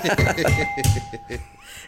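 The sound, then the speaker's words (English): A voice imitates a school tannoy announcement chime, singing three quick ringing tones in a row, fairly loud, with a faint steady tone lingering underneath. “You're about to go, bing, bing, bing.”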